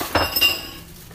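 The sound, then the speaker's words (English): Food being eaten from a dish: two quick, bright clinks against the bowl, each ringing briefly with a high metallic tone before fading to quiet. No one speaks. “It's her eating her food.”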